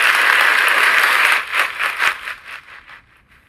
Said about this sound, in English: And without further ado, you know how I like to do. Let's go ahead and give ourselves a round of applause. Oh, turn me up!